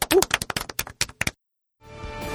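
A short burst of hand clapping, a dozen or so sharp, fairly loud claps in a quick, uneven rhythm, given as applause to close a segment, stops abruptly; after a brief silence, sustained music begins to swell.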